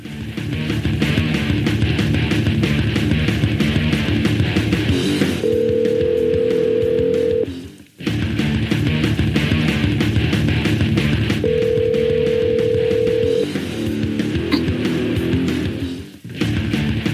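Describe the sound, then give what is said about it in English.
A telephone call placed over the phone lines from the Shop Talk show rings out: two long ringback tones about six seconds apart, heard over a steady, dense background bed, with no one speaking. “We're going to go to the phone lines and try to get a hold of”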